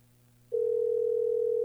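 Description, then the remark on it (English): A phone line rings out with a steady, loud electronic ringing tone that starts abruptly after a faint low hum and holds evenly to the end, with no one picking up. “Answer the fucking phone”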